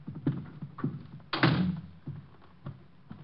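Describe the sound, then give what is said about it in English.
A door shuts with a solid thunk, followed by a few small metallic clicks and rattles as the lock is worked to lock the door, with no voices. “I'm locking the door. I don't want anyone coming in.”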